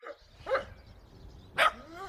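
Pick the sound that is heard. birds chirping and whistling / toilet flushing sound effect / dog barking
dog barking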